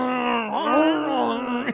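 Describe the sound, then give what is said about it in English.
A person imitates the Toxic Avenger's growl sound effect from the Toxic Avenger films: one sustained, groaning vocal sound of under two seconds, mid-pitched and wavering, rising and dipping slightly before cutting off. “And there's, like, thunder and lightning and, like, the abuse of the Toxic Avenger growl in those scenes.”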